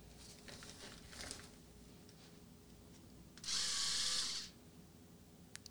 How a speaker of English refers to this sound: This is a foot. This is a foot. A foot sander. That's a clean sanding tool, by the way.